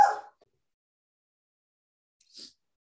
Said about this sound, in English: I find it hilarious that I just paused the recording and restarted it, but I find it hilarious that my dog chose that moment to bark.